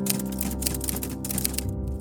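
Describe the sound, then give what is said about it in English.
Rapid mechanical typewriter clacks in an uneven, crisp stream as someone types out an article, layered over a steady tonal music bed that hums underneath throughout. “Slowly, I worked my hands across the typewriter, pouring out those memories, those stories of the women I met there, on the crisp white page.”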